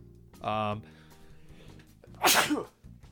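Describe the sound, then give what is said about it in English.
A single loud sneeze: a strained, voiced buildup, a brief pause, then a sharp, hissy explosive burst, with faint background murmur between. “Gesundheit.”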